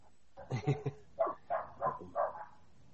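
A dog barks about seven times in quick bursts, a fast cluster followed by a steadier run, sounding muffled in the background of a VHS rip being watched.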